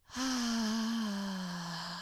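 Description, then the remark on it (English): A long, loud exhale through an open mouth during a breathing exercise, released after holding a breath, voiced like a deep sigh, its pitch sliding slowly downward over about two seconds, with nothing else around it. “So I'm opening my mouth and I'm just letting out all those things that I'm holding.”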